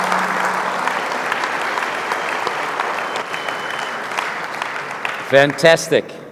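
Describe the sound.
A large audience claps steadily for several seconds in a dense, sustained wash of applause for guests heading back to Bulgaria, which fades as a man's voice starts speaking near the end.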